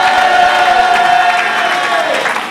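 A large crowd at a religious service roars with loud, continuous shouting and cheering in celebration, a dense wall of voices with a few high whoops rising above it, sustained throughout without a break.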